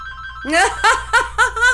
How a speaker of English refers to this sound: That's funny. I said call and the phone rings. And it's loud, too. Please don't answer that.